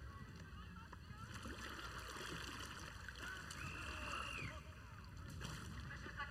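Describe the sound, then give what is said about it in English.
A rowing boat moves through water, with oars splashing and water sloshing steadily. A brief high, wavering call rises partway through, and muffled voices may sit faintly underneath. “And I'm in charge of this boat, madam. Now row!”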